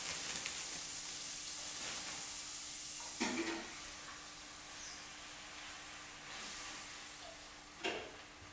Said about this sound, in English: As you can hear, it's sizzling.